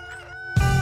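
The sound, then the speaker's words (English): A rooster crows at a chicken coop in a TV chicken commercial, a brief, tonal call ending in a sudden louder, rougher burst. Fairly loud, with no one talking. “Over here at the chicken coop, man. Man, I love chickens, man.”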